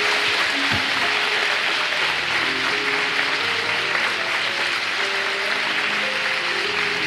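A church service crowd claps for Mayor Price for about seven seconds, a dense, loud wash of applause that holds an even level throughout, with faint sustained low tones underneath and no talking.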